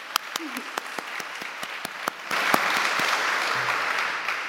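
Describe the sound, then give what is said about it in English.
A crowd applauds the young people, starting with scattered distinct claps that swell into dense, steady clapping from many hands, with faint voices underneath. “Clap for the young people.”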